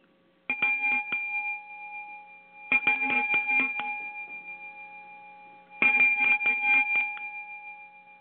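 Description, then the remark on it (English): A ceremonial bell rings out three times to begin a winter solstice ritual, each round a quick cluster of bright metallic strikes followed by a long, shimmering ring that fades slowly. It sounds clear, with no voices. “As I ring a bell, we begin.”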